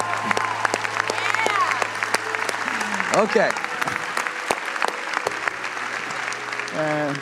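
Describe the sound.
A crowd breaks into steady applause, dense clapping filling the whole stretch at an even, fairly loud level, while a few voices speak briefly over it.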